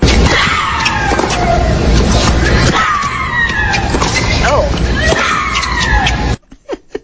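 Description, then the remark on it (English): A tennis player, whose screams have been clocked at 109 decibels, lets out three loud, shrill screams as she hits the ball, each falling in pitch, about every two and a half seconds over steady background noise, then brief talk. “And we're going to listen to her scream now.”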